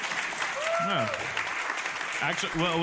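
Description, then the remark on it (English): An audience claps steadily throughout, a dense, even wash of many hands, with a few voices calling and whooping over the applause, as audience members from Rhode Island clap when asked to. “Who do we have here that's actually a Rhode Islander? Clap.”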